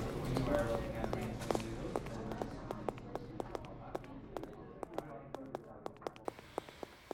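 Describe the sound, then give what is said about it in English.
Steady footsteps walk at a brisk, even pace, a long run of sharp taps over a low, murky background rumble that gradually thins out. “You walk, I will follow. I'll walk, you can follow.”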